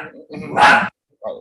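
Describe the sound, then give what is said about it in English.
A puppy lets out a short, sharp bark, followed a moment later by a briefer second yap, both clear. “I heard the pup that time.”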